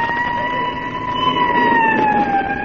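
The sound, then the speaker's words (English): A police car siren wails steadily and loudly, its sustained tone sliding slightly lower as the vehicle passes by, with a rumble of engine and road noise underneath and no talking. “There goes another squad car, McGee.”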